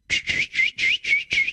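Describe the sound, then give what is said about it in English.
A short whistled tune of six breathy, high notes in a steady, even rhythm, each note held briefly with small gaps between. Fairly loud, with no one talking over it. “Let me sing you guys a song here.”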